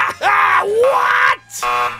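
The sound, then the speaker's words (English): A voice imitates a game show buzzer with two loud, nasal buzzing blasts. The first is long and bends downward in pitch before rising, and a shorter second blast follows after a brief gap. “Give that man his buzzer.”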